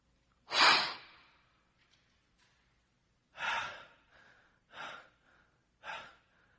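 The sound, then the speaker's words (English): A person imitates a deer panting with breathy, airy exhales: one loud sharp gasp, a pause, then three quicker, softer pants in a loose rhythm, with no talking. “I've seen the deer. I've heard them pant.”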